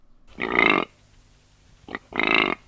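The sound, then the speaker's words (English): Two deep, rough grunts from a male animal, known as its roar, each lasting about half a second with a raspy, growling texture, separated by a pause and a brief short huff before the second. “And then the males make grunting and what is known as a roar.”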